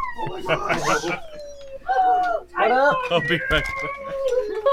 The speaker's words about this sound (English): I'm sorry, there's a puppy.